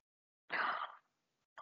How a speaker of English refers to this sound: Sorry, if you hear breathing, it's my husky. He's decided he wants love.